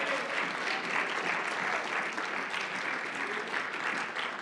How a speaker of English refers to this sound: Come on, everybody, clap your hands.